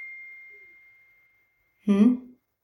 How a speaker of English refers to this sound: And I know that you heard that bing. I forgot to turn my phone off. So this may get edited, may not.